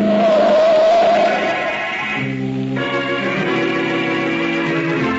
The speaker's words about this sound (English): Hey, wait, look at that car come. Boy, is he traveling. Why, that crazy fool.